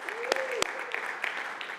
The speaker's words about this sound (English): Give Jesse a hand of applause, would you?